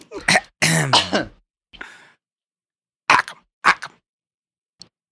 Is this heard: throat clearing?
yes